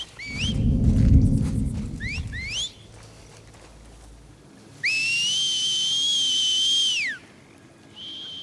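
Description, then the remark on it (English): Children whistle: a few quick upward chirps over a low rumbling clatter, then a long steady whistled tone held for about two seconds, and a brief final note. “So children are able to whistle, as you can see in … and ….”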